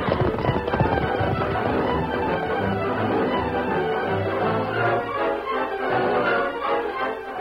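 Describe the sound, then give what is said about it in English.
Horses' hooves clip-clop steadily, a busy overlapping patter of several horses moving off at a brisk walk as a group of men mount up and ride out in pursuit, continuing without pause. “Come on. Follow me and get your horse right away. Come on, boys. Here. Now mount.”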